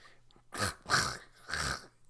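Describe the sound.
A voice imitates a man choking and coughing on two dry foods in his mouth, with three rough, hacking bursts in quick succession, loud, with brief gaps between them and no words spoken.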